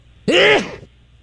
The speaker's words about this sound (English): Here is sneeze number three.